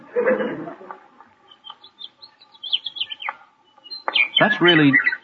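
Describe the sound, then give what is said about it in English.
Linnet and meadowlark songs mingle: high, quick chirps and warbling trills through the middle, with fuller, lower voice-like passages at the start and end. “Linnets and meadowlarks.”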